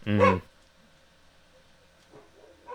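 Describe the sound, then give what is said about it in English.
A single loud bark from a pet dog rings out at the start, followed by quiet background noise and a faint rustle near the end. “There's my dog barking again.”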